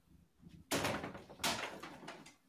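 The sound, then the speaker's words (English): A man repeatedly smashes his bedroom door at his parents' house: it is struck hard twice in quick succession, each loud bang followed by a rattling, booming decay, with faint knocks and scuffs between them and no talking. “He's just like smashing the door still. That's his bedroom door at his parents' house.”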